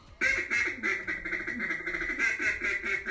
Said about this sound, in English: Was that him? Yeah. That sounded really good. That was really good. Is he really blowing the duck call there? Yeah. That's pretty damn good.